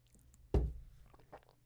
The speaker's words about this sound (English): Another sip.